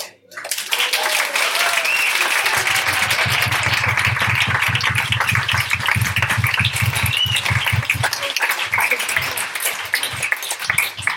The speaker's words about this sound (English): What a fantastic panel. Can we give a round of applause to all of you?